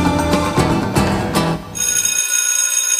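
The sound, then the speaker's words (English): A bell rings loudly and continuously to signal the beginning of class, a bright metallic clanging that holds steady for several seconds, preceded by a brief burst of busy, clattering sound. No one speaks. “And the bell means the beginning of class, but first, the roll call.”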